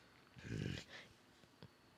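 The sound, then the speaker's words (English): A person gives a short, low, rumbling growl that sounds like a dog, followed by a softer breathy trailing sound and a faint click, otherwise quiet. “I thought that was Coda. I was like, I'm sorry to scare you. It's like, the hell? What are you doing? That was my growl.”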